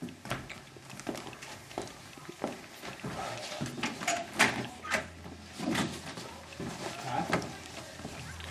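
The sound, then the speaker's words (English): A car door opens and shuts with a series of sharp clunks and rattles, accompanied by shuffling movement and faint background murmuring. “Let's get into the car.”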